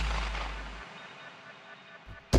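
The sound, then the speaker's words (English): A loud rifle shot, fired at a deer, booms and rolls away in a long fading echo, then a second sharp crack hits near the end. No one speaks. “Took a deep breath, and I shot again, and...”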